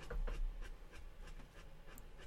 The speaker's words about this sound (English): He does this, if you can, I don't know if you can hear the panting going, he gets real excited about that bone and he has to, I don't know what's happening.